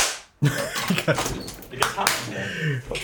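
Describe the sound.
A handful of loud, sharp hand claps, made to chase a cat out through an opened door, land at uneven intervals, each a bright smacking crack, while people talk and exclaim around them.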